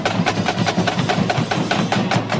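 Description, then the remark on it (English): The Brooklyn United Marching Band plays loudly on Fifth Avenue during the Fifth Avenue for All Holiday Open Streets program, with a steady, quick drum beat pounding through a dense wall of sustained instrumental tones. “That is the Brooklyn United Marching Band, just one of the special attractions at today's first Fifth Avenue for All Holiday Open Streets program.”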